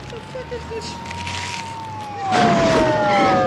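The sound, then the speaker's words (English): A Beverly Hills police car siren holds a steady, fairly loud wail that slowly slides lower, while a rush of vehicle noise swells near the end as police cars drive up onto a walkway, and voices murmur underneath. “Nope, Beverly Hills PD, like, literally drive up onto the walkway.”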